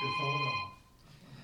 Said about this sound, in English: We got a phone ringing in the background.